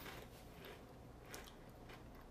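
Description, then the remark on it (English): Crunching of a crunchy cuttlefish snack being chewed, with four or five irregular crisp crunches over a steady quiet background and no talking. “So, kind of a crunchy snack there.”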